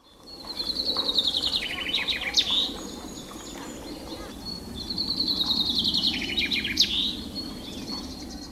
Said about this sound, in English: Birds from Flanders sing a song which ends with a particular flourish, which Flemish finch keepers, known as finconeers, call a suskavit.